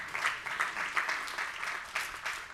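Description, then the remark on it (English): An audience applauds with dense, steady clapping from many hands, a continuous crackling wash at moderate volume, heard on its own without any talking. “Yeah, that's a good place to clap.”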